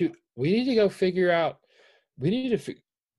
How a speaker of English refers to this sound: He's yawning. Okay, never mind. I thought my dog was having a seizure. Never mind, he was yawning.